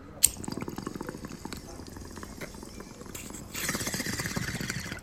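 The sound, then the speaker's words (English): Steady gurgling of a water pipe (bubbler) bubbling in rapid pulses as someone smokes cannabis, opening with a sharp click and growing louder and busier near the end. “Oh, that water in my mouth. Bubbler water.”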